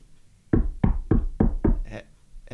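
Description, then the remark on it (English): Five firm knocks on a bunker door in a quick, even rhythm, fairly loud, with no one speaking. “The zombies don't knock, do they?”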